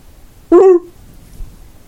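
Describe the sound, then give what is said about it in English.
A sea lion out in the water gives a single loud, hoarse bark, a short harmonic honk that fades quickly, leaving faint low background rumble of open water. “more out in the water, you hear kind of a barking sound.”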